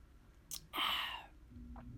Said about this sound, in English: But hold on, taking a sip. My throat is dry. Hold on.